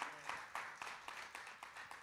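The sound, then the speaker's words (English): An audience claps their hands together to praise God in the morning, in a steady, quick rhythm, the overlapping claps forming a soft, even patter with no voices clearly heard. “Clap your hands and give God praise this morning because he's worthy of that.”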